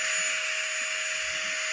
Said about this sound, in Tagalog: Correct answer is vacuum.